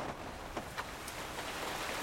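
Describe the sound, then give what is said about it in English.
Steady rain hisses down onto the cobblestones of a town centre street, speckling the street lanterns, a dense, even wash of noise with a few sharper drips and taps scattered through it, with no voices. “Outside, the rain continues to bounce gently off the cobblestones and speckle the street lanterns of the town centre.”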